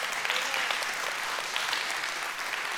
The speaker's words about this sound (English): If you believe that today, give the Lord a hand clap.